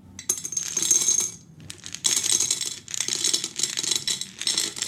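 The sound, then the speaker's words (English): Small hard sweets, including milk bottle sweets, pour out of a container in a rattling, clattering cascade, several bursts of dense tinkly clicks with brief pauses between them, fairly loud with no talking. “Actually, can you pour it out right now and just check the milk bottles for me, please?”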